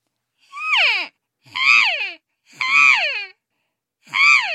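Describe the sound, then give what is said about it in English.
A cow elk's estrus call, made during her period of fertility: four long, whining, nasal mews, each rising then sliding down in pitch, separated by short pauses, loud and clear with no other sound. “This is an estrus call. It's made by a cow elk during her period of fertility.”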